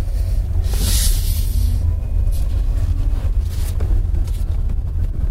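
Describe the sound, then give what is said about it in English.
An electric car rolls away almost silently, leaving only a steady low rumble of road and wind with a couple of soft hissing swells and no engine note. “Still not quite used to the idea of being able to roll away utterly silently.”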